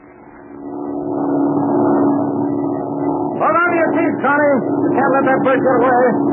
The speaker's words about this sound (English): Hey, listen. There's another plane. That isn't the same one. You can tell by the engine.